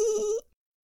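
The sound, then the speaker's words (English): A single short sheep bleat, loud, a clear wavering cry of under half a second that cuts off abruptly into silence. “I hope you're all happier than Ray when she sees a dog get scared by a sheep.”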